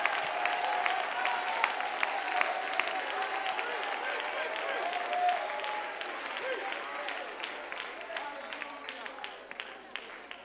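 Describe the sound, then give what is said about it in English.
A crowd claps their hands to rejoice, praising the Lord, steadily for several seconds, a dense, continuous patter of many hands, with a murmur of voices rising underneath and the clapping growing more scattered toward the end. “Come on, clap your hands and rejoice.”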